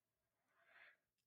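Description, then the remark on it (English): A single soft, breathy yawn from a person short of breath after talking at length into a microphone; it swells to a hazy peak and then fades out, quiet, with no talking around it. “So I'm not yawning because I'm bored by any means.”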